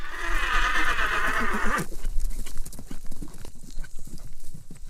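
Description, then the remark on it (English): A horse lets out a loud, wavering whinny lasting a couple of seconds, then its hooves clip-clop in a steady rhythm on a hard surface. “which brings me to our final segment, riding horses with my dad,”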